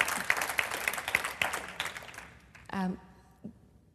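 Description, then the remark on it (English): A crowd claps in a dense burst that thins out over a couple of seconds, then a brief voice answers and a lone clap or two trails off. “Yes, please clap.”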